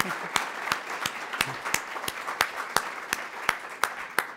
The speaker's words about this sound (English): So if you could please give him and Mrs. Ryan a round of applause.